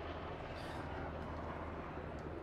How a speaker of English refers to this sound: Can you guys still hear me over the helicopter? Mostly? Okay, good. How about now? Still? Still. It's a cool helicopter though, no?